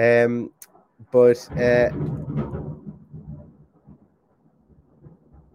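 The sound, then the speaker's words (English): A loud clap of thunder following a flash of lightning breaks into a deep, low rumble that rolls on for a couple of seconds and gradually fades out, with brief voice sounds heard near the start. “Yeah, there's thunder as well. That was a real loud clap of thunder.”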